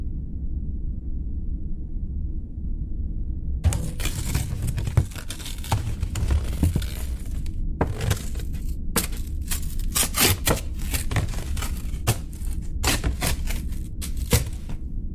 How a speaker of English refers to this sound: Alright. Alright, the wire is chewed through.